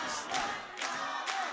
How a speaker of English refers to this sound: And the crowd is chanting mama. And there it is. The crowd fueling Flex Simmons.